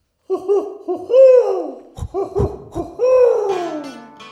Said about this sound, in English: That owl.